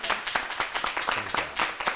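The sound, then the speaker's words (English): An audience claps in a steady, rapid rhythm, the many hand claps blending into a dense, moderately loud patter with a faint voice underneath. “And that's beautiful to clap and you know, sometimes your mind is on the scripture and you'll think you hear the clap.”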